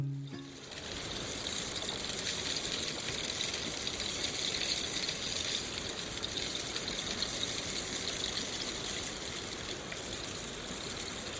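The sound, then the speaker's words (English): A rain stick pours out a steady, unbroken cascade of tiny pattering rattles, a dense hissing shower that holds an even loudness for about eleven seconds with no voices. “It's called the rain stick.”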